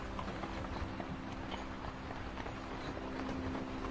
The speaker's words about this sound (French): La calèche est actuellement sur la neige. Elle avance doucement au rythme des chevaux qui la tirent.